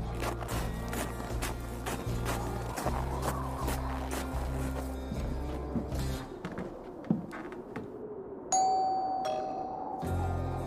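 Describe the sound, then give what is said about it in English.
Footsteps and a low, steady rhythmic backing lead up to a clear two-tone doorbell chime ringing out near the end, bright, as someone walks up to a house and rings the bell. “But out of habit, I walked up and rang the bell.”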